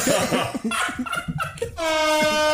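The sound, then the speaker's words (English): Laughter and chatter give way to a loud, sustained air horn blast that holds steady for the final second, blaring over the voices. “You get an air horn.”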